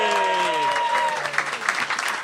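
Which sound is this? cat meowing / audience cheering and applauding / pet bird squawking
audience cheering and applauding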